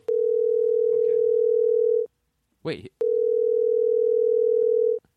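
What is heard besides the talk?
phone ringing sound effect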